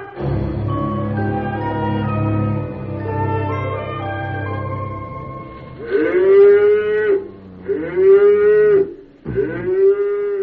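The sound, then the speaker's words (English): Cows moo loudly at 4 o'clock in the morning, first in long, low overlapping lows, then three separate drawn-out calls that rise and fall, with no one speaking. “The cows are mooing.”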